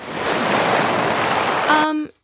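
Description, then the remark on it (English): A steady, loud rushing roar of crashing ocean waves fills about two seconds, then breaks off abruptly, with a brief tonal, voice-like sound at the very end. “How about like crashing waves?”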